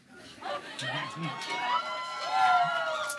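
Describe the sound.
A crowd cheers and whoops over steady clapping, with high rising shouts from several voices. The noise swells and holds loud for about three seconds.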